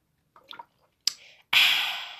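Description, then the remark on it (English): Sipping water from a bottle: a few soft wet slurps, a sharp plastic click, then a louder breathy rush that slowly fades. No one speaks. “Matter of fact, let me lubricate my throat chakra right now.”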